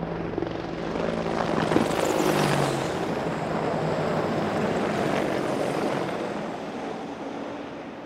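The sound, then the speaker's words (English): A squadron of Army Apache military helicopters roars overhead across a battlefield during a military funeral ceremony, a loud rotor drone with a throbbing low hum that swells in the first few seconds and stays strong as they pass, with no voices. “As the final notes of Taps faded, a squadron of Army Apache helicopters flew over the battlefield, and then a bagpiper played Flowers of the Forest to honor the Highlander.”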